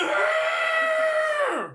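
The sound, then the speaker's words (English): A person imitates cows around a yard bellowing for hay with one loud, drawn-out, strained call that holds a steady high pitch, then sags downward and cuts off at the end. “All the cows around the yard, because we can't move the hay very all far, the they make a sound that I would describe as this.”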